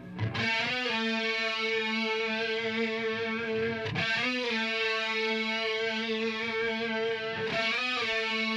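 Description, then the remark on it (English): A heavily distorted electric guitar plays alone, sustaining thick, buzzing chords that restart twice with sharp attacks, loud with no voices. “Like it goes clean. He's on doing the low on, end on this one. On the guitar one and then yep. Distortion on this one.”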